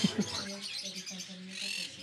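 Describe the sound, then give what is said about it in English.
Canaries in bird cages at a market of small merchants' stands chirp in a steady, bright twitter that runs throughout, set against a low hum of market noise with a couple of soft thumps at the start. “Straight ahead, you'll see the canaries and the bird cages.”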